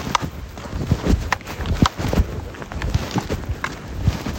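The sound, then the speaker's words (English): Horse hooves clip-clop at a steady walking pace, a series of sharp knocks over a breezy outdoor background with some wind rumble on the microphone. “Stay here, horse.”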